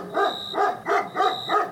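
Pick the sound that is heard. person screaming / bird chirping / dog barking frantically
dog barking frantically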